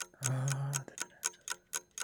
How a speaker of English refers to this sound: All right, I'm going to apply a sound effect of a time clock.